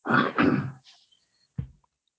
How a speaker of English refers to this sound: You sound pretty funny. I don't know why I'm needing to clear my throat so much.